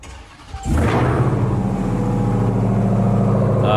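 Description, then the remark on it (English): A V8 engine cranks briefly, then fires up with a loud flare and settles into a deep, steady, throbbing rumble that continues to the end. No one speaks. “Unfortunately, I was in the cab when it started, so you didn't get the crackle.”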